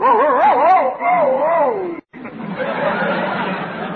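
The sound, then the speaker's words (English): A person imitates a male dog answering a female dog's call with a wavering, warbling howl lasting about two seconds, then after a short break comes noisy, breathy chatter or laughter, all fairly loud. “The boy dog answered like this.”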